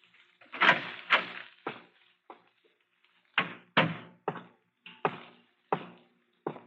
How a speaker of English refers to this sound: Is anyone here? Nobody. How did you get in? I just opened the door.